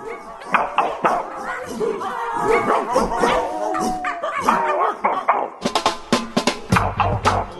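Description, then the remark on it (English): Several dogs, a specially trained pack, bark and yip at once in a loud, overlapping clamor, with a brief pause before a run of sharper, rhythmic barks at the end. “Here at Freakonomics Radio, we've given one particularly clever pack of dogs some very specific training.”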